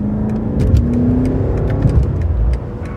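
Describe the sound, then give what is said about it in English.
The engine of a 2003 BMW M5 sports sedan revs steadily, a rising harmonic whine over a rough low rumble for about three seconds, with no one talking. “we're doing it at the wheel of Gladwell's own 2003 BMW M5”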